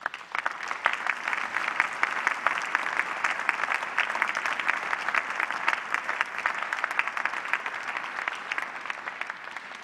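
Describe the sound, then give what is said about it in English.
Sustained audience applause at the 108th American College of Surgeons (ACS) Clinical Congress in San Diego, for the honorees, their loved ones and colleagues, a dense, steady wash of many hands clapping at an even loudness with no voices rising above it. “Please give yourself, your loved ones, and your colleagues another round of applause.”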